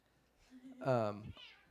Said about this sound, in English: Cat with a lot to say here.